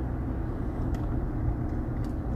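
A deep 5.7-litre, eight-cylinder car engine accelerating onto a country road (Allentown Road, Telford, Pennsylvania) rumbles steadily, a loud low growl with a couple of faint brief ticks on top, and no one speaking.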